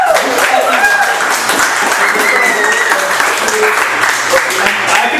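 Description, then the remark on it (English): A large crowd applauds the performers on stage steadily and loudly for several seconds, dense clapping filling the room, with a few whistles and cheering voices mixed in. “Well, yeah, a big applause for the people on stage here.”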